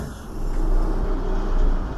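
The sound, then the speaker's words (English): Automated doors slide open after access is granted, with a steady, low mechanical rumble and hum that swells slightly and holds for about two seconds, with no voices. “Opening doors now.”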